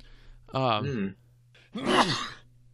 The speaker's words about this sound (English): Bless you. Bless you. Thank you. It's one of those where I have a hard time breathing after.